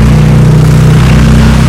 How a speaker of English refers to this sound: God bless you, motorcyclist. Be blessed as you drive. No accidents. Amen. Very loud.